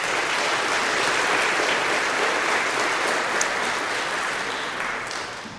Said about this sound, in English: And likewise for those who are parents who have supported especially our young people in this process, or mentors or friends, you know who they are, but let's have a hand of applause for them as well.